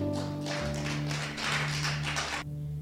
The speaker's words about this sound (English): Give a hand clap to the Lord, please.